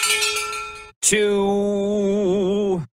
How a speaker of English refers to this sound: That, and then here's the breaking news. Where's my bell?